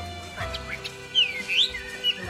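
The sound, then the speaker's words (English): A caged songbird kept in the courtyard at the back of a cafe in Beijing sings a short run of bright, sweeping whistled chirps, rising and falling in quick phrases at moderate volume, over a steady low background hum with no one talking. “Beijingers once had the habit of carrying their birdcages out every morning to the local park to see whose bird sang more sweetly.”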